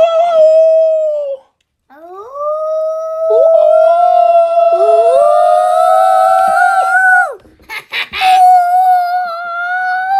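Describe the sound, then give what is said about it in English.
Two dogs howl together, long sustained wavering tones overlapping and rising in pitch, with a short pause near the start and a brief choppy break before the howling resumes. “I was saying done howling.”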